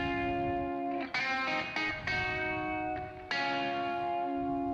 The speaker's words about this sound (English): Do you know what guitar you used for that part? Was that Tiger? I think so. I think so. I'm listening. It was definitely Tiger or Gold Top, and I think it was Tiger.